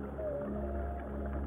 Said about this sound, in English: This is the song of a humpback whale. The adult male swims slowly in peaceful solitude. As he travels, he performs haunting vocalizations that often last for 20 minutes or more. It's a low, ethereal sound that can be heard hundreds of miles away.